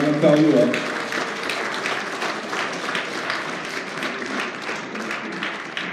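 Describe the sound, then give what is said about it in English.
Steady applause from an audience for a group of women fills the whole stretch, a dense, even patter of many hands clapping at moderate loudness, with a brief voice audible at the very start. “Can we give these ladies a hand clap?”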